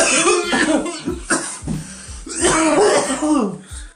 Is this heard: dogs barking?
no